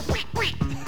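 A nasal, cartoonish duck voice quacks three times in quick succession, loud, over a steady backing of disco music from a record; a voice imitating a duck rather than a real bird.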